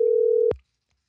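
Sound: telephone call connecting tone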